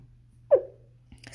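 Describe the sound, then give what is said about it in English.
A single short, abrupt hiccup or small burp, a quick mid-pitched gulp that fades fast, heard alone over a low steady hum before faint noises resume. “I just burped, hiccuped.”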